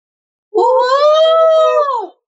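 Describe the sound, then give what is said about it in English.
A voice imitates a creature's horrific scream: one loud, sustained wailing cry lasting about a second and a half, holding a steady, strained pitch before sagging at the end, with nothing else around it. “And it lets out a horrific scream”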